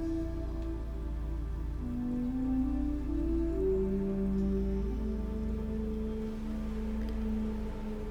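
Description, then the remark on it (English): Waves crash onto the shore in a steady, rushing wash of surf noise that rolls on without a break, blended with soft sustained musical drones and low hum. No one speaks. “Hear the crashing of the waves onto the shore.”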